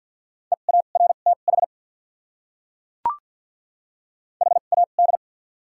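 Rapid Morse code beeps at 50 words per minute with doubled character spacing, sending common English words: a steady mid pitch, short dots and dashes in two quick bursts separated by a pause and a single sharp click, with no voices.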